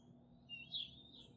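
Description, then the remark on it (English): A chipping sparrow at the bottom of a bird feeder pole gives a couple of faint, high, thin chirps in quick succession over a low, steady background hum, around 6:25 in the morning. “Man, that chipping sparrow is just still going away. The bottom of the pole.”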